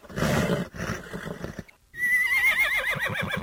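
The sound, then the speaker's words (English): A saddled horse named Lightning, having its bit and bridle put on, neighs: a loud, high whinny that wavers and slides downward into rapid quivering pulses, following a couple of seconds of rustling, clattering noise. No one speaks. “Saddle is on and cinched up tight. Stick that head over here and let me get that bit in your mouth.”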